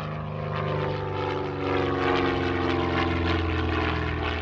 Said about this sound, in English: Seal lands his plane at Los Brasiles Air Base in Managua, Nicaragua.